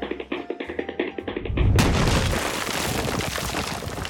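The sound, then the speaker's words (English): A quick run of running thumps gives way to a loud, heavy crash that bursts into a sustained roar of crumbling, rattling debris as someone runs straight through the wall of Mr. Schnooze's house to get indoors from a rubber ball storm. “Couldn't you use the door instead of running straight through my wall?”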